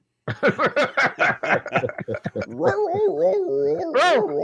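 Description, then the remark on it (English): A voice imitates a dog, first with a quick run of about a dozen short, yappy barks, then with drawn-out whining, howl-like vocal sounds. Fairly loud, with no other sounds. “Bark.”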